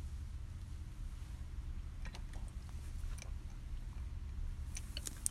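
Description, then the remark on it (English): Someone sips water: soft wet mouth clicks and a gulp or two in short bursts, quiet over a steady low background hum, with no talking. “let me take my sip of water before we get to Ty in Kansas City”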